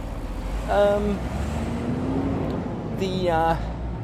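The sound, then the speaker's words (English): A large truck passes with a steady, heavy low engine drone, interrupted twice by short, bright tonal whines layered over the road noise. “I've got to wait for this truck here to pass.”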